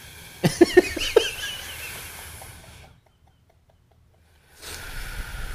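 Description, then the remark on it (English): A person breathes in an exaggerated, heavy way, demonstrating 'combat breathing': a quick burst of four or five sharp, raspy huffs with a throaty edge, then a breathy hiss that fades into silence before soft noise returns. “This is like spring break breathing.”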